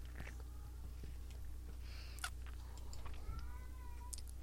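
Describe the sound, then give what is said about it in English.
Cats yowl and meow faintly, a few drawn-out wavering cries scattered over a steady low hum, with scattered clicks and no talking. “Oh, so the dogs aren't barking, but the cat's going to have a fit. Yeah, now the cats are going at it.”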